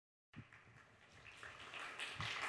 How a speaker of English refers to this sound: Oh, wow. Thanks for the lively round of applause. That was quite nice to go up to.